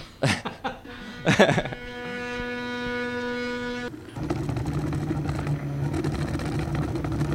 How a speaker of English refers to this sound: This is sort of a do-it-yourself 3D printer, but I assume that there are much bigger 3D printers if you're in the commercial end of this sort of an operation.